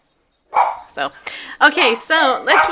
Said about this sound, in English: Okay, our dogs are barking. I don't know why. Okay. Because they can. That's what dogs do.